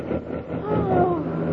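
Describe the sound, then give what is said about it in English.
An airplane engine sputters back to life after one fuel tank ran dry and the pilot switched to the other tank, then settles into a steady, loud droning roar, with a whining tone that rises and wavers partway through. “I just ran one of the gas tanks dry. I'll switch to the other one.”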